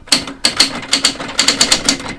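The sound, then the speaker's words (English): Typewriter keys clack in a quick, slightly uneven burst of about nine sharp strikes, fairly loud, with no voices, in a typewriter shop in Maplewood crowded with stacked typewriters. “It was a busy afternoon at Jones Typewriter in Maplewood, a shop so crowded with stacked typewriters there's only a narrow path to walk through.”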